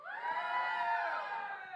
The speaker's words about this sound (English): Can I hear a shout?